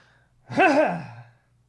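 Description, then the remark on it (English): A single throat clearing, a voiced, gravelly rumble lasting under a second with a wavering pitch that dips and rises, moderately loud and heard on its own without talk. “It sounds like I've got something in my throat. Let me clear that real quick.”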